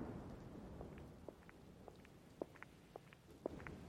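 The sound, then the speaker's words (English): Rain falls in a steady, soft low wash, with scattered irregular drips and taps. No one speaks. “I'm all for a bit of fun, but out in the rain?”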